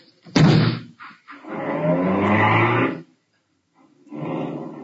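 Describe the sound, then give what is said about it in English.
A sharp slam, then a loud, close engine roar with squealing tires as a car tears away, fading briefly before another burst of revving. No one speaks. “Now, come on, get in the car.”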